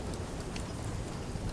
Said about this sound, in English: Come on in out the rain, then.